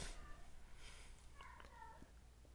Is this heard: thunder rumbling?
no